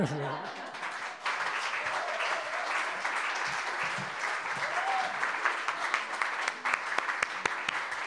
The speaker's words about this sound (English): So let's give a huge round of applause